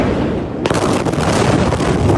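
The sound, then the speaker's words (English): A massive explosion, the second at Beirut's main port, bursts in abruptly after a low rumbling hiss, then a loud, sustained roaring blast with crackling, distorted, wind-like noise continues to the end. No one speaks. “A second massive explosion that some described as like an earthquake.”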